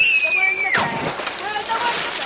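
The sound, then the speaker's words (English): Water sloshes and splashes while children's high, excited voices call out as they swim in the Severn River, a half hour outside Washington, D.C., on a summer day, a sharp squeal at the start giving way to busy, continuous splashing. “A half hour outside of Washington, D.C., a summer scene plays out on the Severn River.”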